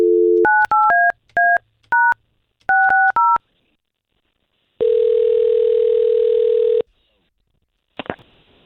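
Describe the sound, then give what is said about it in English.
A steady dial tone is followed by a quick run of touch-tone dialing beeps in uneven bursts, then a long ringback-like tone and a brief click as the line connects, all clear, as a phone call is placed to a woman. “So all we're going to do right now is just call her and let us talk to her first, and then we'll find some spot there to introduce you into the conversation, okay?”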